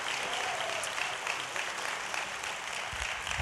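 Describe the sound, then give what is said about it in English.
A church audience applauding steadily for Jesus, a dense wash of many hands clapping together throughout, fairly loud and sustained with no pauses. “We've clapped a lot, but can we just honor the Lord? Come on, put your hands together for Jesus today.”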